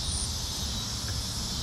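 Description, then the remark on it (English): A dense, steady chorus of cicadas in Kansas City in August buzzes continuously at a shrill pitch, filling the whole moment without pause, with a faint low rumble underneath and no voices. “and I wanted to hear the cicadas, and you and I got a clip of that.”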